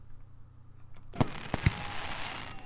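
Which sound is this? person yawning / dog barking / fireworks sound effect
fireworks sound effect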